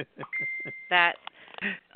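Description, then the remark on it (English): A single steady electronic beep from a phone notification, on a phone the speaker forgot to silence, sounds clearly for about half a second while a person talks over it. “I forgot to silence my phone.”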